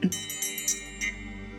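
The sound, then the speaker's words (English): A single bell is struck, giving a bright metallic ring with shimmering high overtones that sustain and slowly fade. No one speaks. “I would love to just set our space by ringing our bell, connecting us with our breath and the present moment.”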